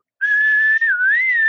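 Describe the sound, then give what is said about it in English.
A clear whistle in the background of a song holds one steady note, breaks off for an instant, then resumes with a gentle dip and rise in pitch. No voices are heard. “I love a little whistle in the background moment.”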